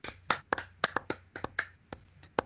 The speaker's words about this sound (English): without revealing that Hun is actually Casey's dad until until the next to last page, or the next to last page of issue 25, is so audacious and amazing that, like, I'm gonna golf clap to that right now.